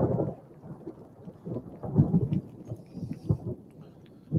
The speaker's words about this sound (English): You guys listen to this. This is not from Hammer Time. This is another meteorologist out in Buffalo. Ready? Yep. Snow's falling. Thundersnow. I love it.